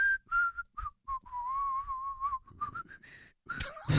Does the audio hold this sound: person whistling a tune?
yes